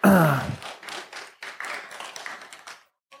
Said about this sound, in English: I don't know if y'all are clapping like you're happy or sympathy, or I can't tell what's going on there.